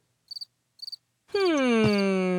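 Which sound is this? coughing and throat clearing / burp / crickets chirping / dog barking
crickets chirping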